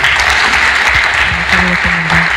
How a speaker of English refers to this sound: Excellent. Clap.